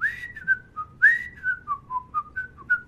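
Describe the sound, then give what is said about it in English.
A person whistles the theme tune of The Andy Griffith Show, a bouncy, tuneful melody, clear, with short notes gliding up and down in a steady rhythm over faint background hum. “Andy Griffith. Just give me a whistle.”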